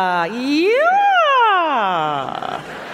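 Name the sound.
voice imitating a siren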